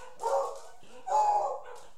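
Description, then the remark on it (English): Two loud, sharp dog barks, separated by a short pause, with the second bark slightly longer and more drawn out. “People aren't allowed to walk their dogs? Are you the only dogs allowed? Go lay down.”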